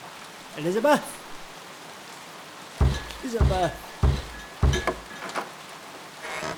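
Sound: rain falling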